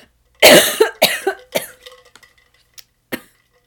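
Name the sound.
repeated coughing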